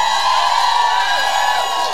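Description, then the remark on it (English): A live audience at Bramblefest 23 cheers and whoops loudly, a dense, sustained wall of crowd noise with excited shouts rising above it, steady for the whole two seconds. “Pretty late at night, and this crowd at Bramblefest 23 They are.”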